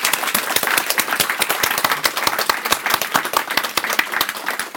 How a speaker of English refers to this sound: Let's give her one more welcome applause.